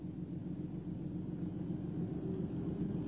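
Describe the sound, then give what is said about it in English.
The engine of a long, low Invicta motor car idles steadily with a low, continuous rumble, unchanging throughout, as the overheating car sits in a block of traffic on Tottenham Court Road in December 1932. No voices are present. “The block of traffic in the Tottenham Court Road was exasperating. Their splendid motor car was overheating.”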